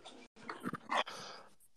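Dogs bark and whimper in a short, excited burst of yelps and whines, moderately loud, with no talking over them; the dogs react to a spoken greeting, thinking someone is at the door.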